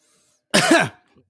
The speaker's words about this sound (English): This guy, this guy just starts coughing.